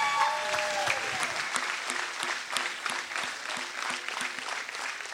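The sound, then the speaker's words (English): An audience claps steadily for several seconds as a hand clap of praise to God at a night church service, a dense wash of many hands with some sharper individual claps standing out, fairly loud throughout with no talking. “Y'all give God one good hand clap of praise tonight.”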